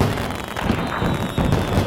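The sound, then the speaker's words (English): A dense, continuous barrage of 4th of July fireworks at a lake: rumbling booms blended with crackling pops, steady and fairly loud throughout, with no clear gaps and no one talking. “Go down to the lake for 4th of July fireworks.”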